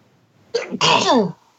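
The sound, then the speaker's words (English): A single loud sneeze: a short sharp intake burst followed immediately by a forceful, breathy explosive release lasting about half a second, with no talking. “Bless you.”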